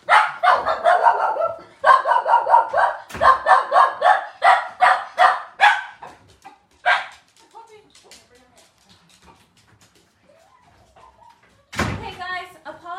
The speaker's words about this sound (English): Someone just turned up at the door, my daughter and her friend, and my dog went crazy, of course.